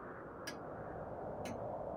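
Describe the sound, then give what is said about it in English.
A pocket watch ticks faintly, two soft clicks about a second apart, over a steady low hiss with no voices. “Where is my pocket watch?”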